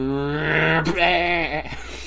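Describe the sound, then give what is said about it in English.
A sheep on a road gives a single drawn-out bleat, loud, wavering in pitch for about two seconds with a brief break midway, heard alone without any talking. “And it, like, shows him, like, there's a sheep on the road, and you see him driving his truck.”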